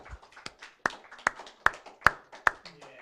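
Audience applause for a pastor and the team, made of sharp, distinct hand claps in a steady rhythm, roughly two or three per second. Quieter claps fill the gaps between the louder ones. No voices are heard.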